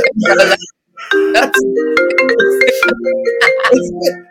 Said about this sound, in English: Why is my phone ringing? How unprofessional of me.